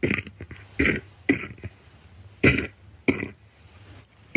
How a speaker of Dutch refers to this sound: Nou, dan laat ik je gewoon deze vieze droge kuch horen totdat je dat wel doet.